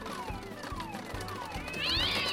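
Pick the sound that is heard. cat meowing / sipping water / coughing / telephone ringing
cat meowing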